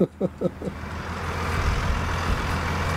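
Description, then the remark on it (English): A parked lorry's engine idles at night with a steady, deep diesel rumble, continuing evenly after a brief voice speaks a few syllables at the very start. “Well, we're parked behind a lorry tonight, so it won't be too windy, hopefully.”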